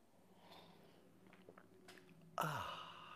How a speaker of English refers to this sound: I like coffee. And join me now for the unparalleled pleasure, the dopamine of the day, the thing that makes everything better except for your coronavirus checks. It's called the simultaneous sip, and it's going to happen right now. Go.